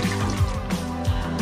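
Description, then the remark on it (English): A toilet flushing, with water rushing and gurgling steadily throughout, fairly loud, with a few low surges along the way and no voices. “There's nothing that can, we just need to flush.”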